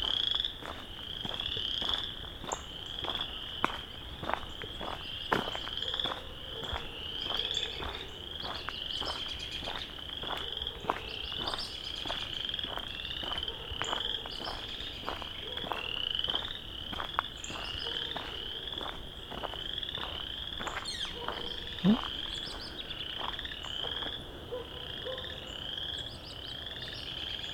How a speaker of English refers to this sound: And here's some good chorus frogs.